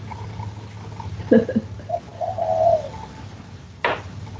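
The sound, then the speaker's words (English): A bird calls outdoors, a few soft, cooing notes over a steady low hum, followed by a brief rustling burst near the end. “My cat's looking for a bird now.”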